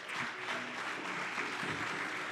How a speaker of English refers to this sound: ¿Puedes darle un aplauso al Señor, al que va a hablar a cada uno de los que estamos aquí? Give a clap for the Lord in this moment.